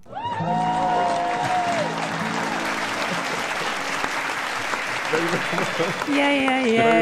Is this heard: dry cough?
no